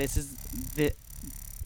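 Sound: burp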